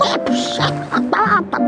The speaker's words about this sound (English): They seem to be clucking and making a hell of a noise.